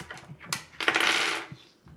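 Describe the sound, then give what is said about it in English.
Dice clatter across a hard tabletop during a game, rolled to see how much damage a move did: a few sharp clicks, then a dense rattling tumble for about half a second and one last tap as they settle. No voices are heard. “Now, wait, I think you have to roll again, because when she flipped the double birds to the school board meeting, you got to roll to see how many damage she did.”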